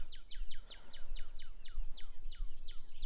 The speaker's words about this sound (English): I got birds. Birds and bugs are chirping.